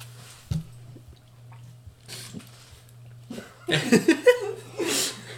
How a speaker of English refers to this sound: I was drinking water. That's why I had to spit all over my shit. That's why I stopped.